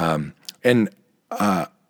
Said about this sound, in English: Anyway, it's Monday, and last time I talked to you, I was fighting this cough, and there it is.